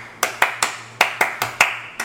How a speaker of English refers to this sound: I mean, that's not really the clap pattern. That wasn't it, yeah.